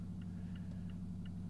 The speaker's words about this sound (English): it's literally stopped at a light, and I can hear the engine revving like 3,000 RPM right now just sitting here